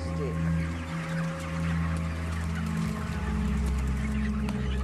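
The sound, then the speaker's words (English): Many chickens cluck and squawk continuously over a steady low mechanical hum at a Tyson chicken processing plant, where injured chickens and chickens with birth defects are being killed, with indistinct voices mixed into the background. “They're killing chickens that are injured or have birth defects.”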